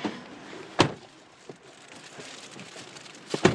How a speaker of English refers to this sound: It's car wash time. Time to record it, because I've never recorded a car wash before.